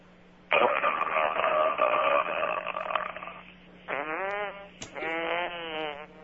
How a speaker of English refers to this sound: How about that? Dubs? Was that a fart burp I think that combo? Was a combo. Combo. I got to move it from one end to the other.